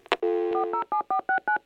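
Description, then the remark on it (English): A click, then a brief steady dial tone, followed by a quick, even run of about eight touch-tone beeps of shifting pitch as a number is keyed in to take a phone call. Clear, with no voices. “All right, next, let's take a phone call.”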